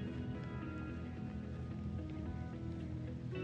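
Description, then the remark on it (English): Soft, steady rainfall hisses continuously without a break, fairly quiet and even, with a low sustained hum running underneath. “A different perspective versus running and trying to get somewhere, but actually sitting and enjoying the rain for what it is.”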